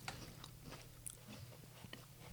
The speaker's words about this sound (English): I'm gonna eat a little bit of a cracker to clear the palate.